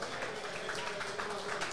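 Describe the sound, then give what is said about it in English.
A crowd applauds for junior rugby league representative teams, the Harold Matthews and SG Ball teams, which won their finals matches. The applause is a dense wash of overlapping hand claps holding an even loudness throughout the short stretch with no pause. “So how about a round of applause for our junior rep teams?”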